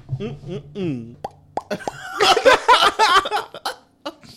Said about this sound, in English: I'm having hiccups after this fucking podcast.